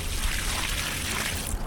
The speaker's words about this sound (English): Nestor de Buen pours a bucket of water on a parking lot made of Ecocreto. The water disappears instantly, leaving behind just a small wet stain.